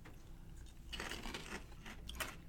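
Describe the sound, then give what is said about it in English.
Someone crunches a Kettle brand New York Cheddar kettle-cooked potato chip: after a quiet moment, a run of dry, crackly bites and chews comes in irregular bursts, fairly soft, with no talking. “And solid Kettle chip as always.”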